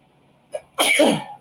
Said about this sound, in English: So anytime I choke on liquid of soda, beer, whatever, I sneeze.